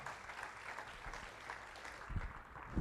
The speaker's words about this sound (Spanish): No me deje aplaudiendo a mi hermana sola, por favor.